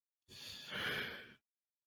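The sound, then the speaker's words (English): A single drawn-out, breathy yawn, fairly quiet, swelling in the middle and lasting about a second before cutting to silence. No talking. “Well, who yawned? Did someone yawn?”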